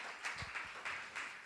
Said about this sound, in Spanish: Aplauda, no se quede con las ganas, diga gloria a Dios.